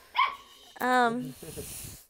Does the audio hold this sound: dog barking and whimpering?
yes